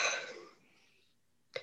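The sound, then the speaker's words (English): A raspy throat clearing or cough opens with a noisy burst that trails off, followed a second later by another short, sharp cough. Fairly quiet, with no talking. “I'm trying to think of something that I can just, like, this is going to sound dirty, but suck on so that my throat stops making me cough.”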